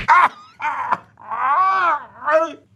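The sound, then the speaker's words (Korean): A man is punched and lets out several pained groans and moans in close succession, the longest one drawn out and wavering, after a brief sharp hit at the start. “아니 왜 보자마자 주먹질이에요?”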